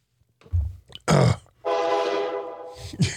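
A short, crude train wreck sound effect: a couple of low thumps and a rough crash, then a sustained, blaring horn-like tone, ending in another quick impact. Loud and close, with no talking.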